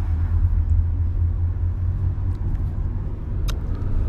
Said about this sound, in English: I'm out here in fucking Santa Cruz. No, I'm in Monterey, and I'm driving in the backseat of a car, and the motherfucking driver is drunk.